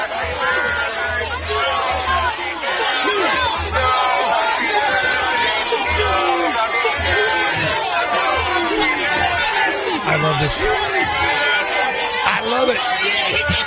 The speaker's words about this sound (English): The new mayor-elect, Eric Adams of New York. Not much of a honeymoon period. This is him, I guess, yesterday being greeted outside by a crowd of hundreds who say no to vaccine mandates.